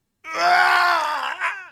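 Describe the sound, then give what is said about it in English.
A human voice imitates a vampire's scream: one sustained, strained, wavering cry of about a second and a half, loud, with a brief rise near the end before cutting off. “The scream of the vampire as he sees the garlic in your hand.”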